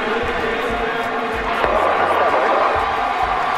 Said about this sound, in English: Listen to the crowd. Oh, they went crazy.